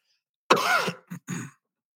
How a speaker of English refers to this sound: I am just going to cough to death on this broadcast. I'm so sorry. Maybe I'll edit that out later.